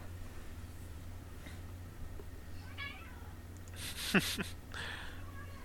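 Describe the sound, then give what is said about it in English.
A domestic cat lets out one loud meow, preceded by a fainter, shorter mew, with a steady low hum running underneath. “My cat is very talkative today.”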